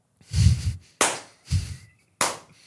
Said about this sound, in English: So I sit down in my seat as a rookie. I sit down, we're going to start clapping. I'm like, yeah, nice. Like, woo, what are you clapping for?